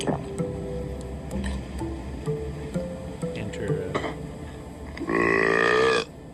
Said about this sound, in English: Enter the commercial burp sound effect.